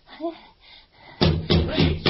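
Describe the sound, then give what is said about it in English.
A man pounds at a locked door, trying to break it down, with four heavy, booming thuds in a steady rhythm after a faint murmur of voice at the start. Each blow lands loud and full. “Oh, no, he'll break down that beautiful door.”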